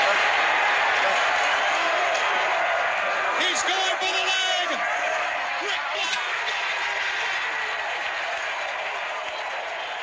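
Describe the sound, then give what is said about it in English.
A large wrestling arena crowd roars and cheers nonstop during a Ric Flair versus Vader match, a loud, dense wall of voices with sharp whistles and shouted yells surging in the middle before settling back into steady noise. “you heard the crowd.”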